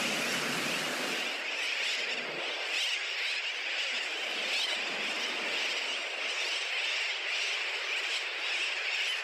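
A steady, hissing wash of ocean surf, with breakers rolling in continuously at an even loudness, and the distant sound of seagulls. No voices are heard.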